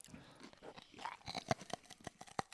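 Crunching as someone bites into a whole freeze-dried strawberry from a freshly opened bag, a quick irregular series of crisp snaps and crackles over about two seconds, with no talking.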